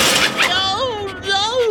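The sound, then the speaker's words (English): A wall clock, knocked off the wall by a dog, falls and shatters in a short, bright crash of breaking pieces lasting under half a second, followed right away by a voice making a drawn-out, wavering vocal sound. “And now sniffing me and pawing me and knocking me off the wall.”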